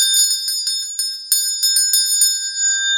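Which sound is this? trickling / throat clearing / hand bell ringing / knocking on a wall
hand bell ringing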